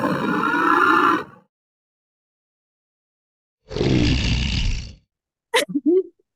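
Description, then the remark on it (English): A voice imitates a woman snoring at night: a loud, rumbling, rasping snore, a pause of silence, then a second harsh, breathy snore, ending in a few short snorting clicks. “And I'm like, okay, she's done snoring for the night.”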